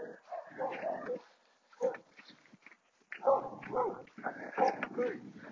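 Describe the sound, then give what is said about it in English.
A dog barks and yips in the distance in short, irregular bursts, with brief pauses between them and a faint murmur of voices underneath. “The dog barking in the distance.”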